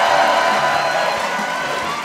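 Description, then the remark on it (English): A huge live audience at the 92nd Street Y in Manhattan cheers and claps in a steady, dense wash of noise, fading slightly toward the end. “We are live before a huge crowd at the 92nd Street Y in Manhattan.”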